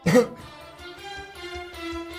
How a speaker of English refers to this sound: I'm coughing up stuff.